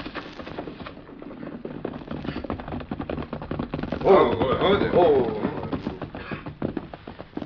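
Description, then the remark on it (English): Rapid galloping horse hoofbeats pound steadily and fairly loud throughout, with a brief vocal sound rising over the drumming rhythm around the middle; a horse coming fast, ridden by Kit Carson with someone accompanying him. “You hear horse? Come plenty fast.”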